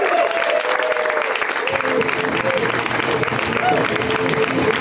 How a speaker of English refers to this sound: Ladies and gentlemen, please, a wild round of applause for Mr. Nick Flanagan. Give it up! Come on!